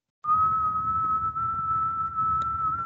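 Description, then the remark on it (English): A person whistles one long, steady high note in imitation of a tea kettle's whistle, held for nearly three seconds at a fairly loud level with a breathy rumble underneath. “What we really need is a tea kettle whistle going off.”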